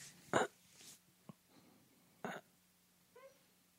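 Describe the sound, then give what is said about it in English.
A small, squeaky fart: a brief high-pitched tonal squeak near the end, following a few short, soft puffs and a tiny click. It is faint, with no talking. “There's a little squeaker. It registered on the recorder.”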